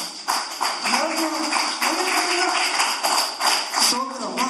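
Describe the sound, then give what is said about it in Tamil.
An audience claps their hands in steady, dense applause that fills the whole stretch, fairly loud, with voices faintly audible underneath. “நல்லா கையை தட்டுவோமே சிஸ்டர், நல்லா கவனிச்சுங்க, நல்லா கையை தட்டுங்களேன். அப்படியாவது கொஞ்சம் உற்சாகம், நல்லா கை தட்டுங்க ஒரு தடவை.”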